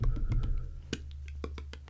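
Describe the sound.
A voice imitates a typewriter with a quick run of sharp, dry clicks and taps in an uneven rhythm, some louder than others, over a steady low hum.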